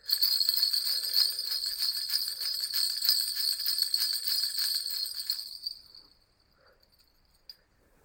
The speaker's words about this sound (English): So bells incoming, and you can pause when you hear them and come back for the final prompt.